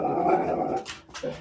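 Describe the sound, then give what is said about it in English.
A dog growls in a low, steady rumble for under a second, then lets out a couple of short, breathy bursts, with no one talking. “And my dog, apparently.”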